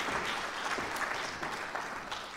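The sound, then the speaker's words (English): A church audience claps steadily to applaud parents committing their children to the Lord, a dense patter of many hands blending into an even, moderately loud wash of applause with no voices rising above it. “Let's applaud.”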